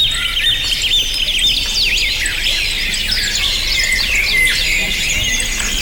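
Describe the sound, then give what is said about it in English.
Many birds tweet and chirp at once in a dense, continuous chorus of high, quick trills and whistles, fairly loud, with no voices. “at number one, the most comforting sound. Yeah. Birds tweeting.”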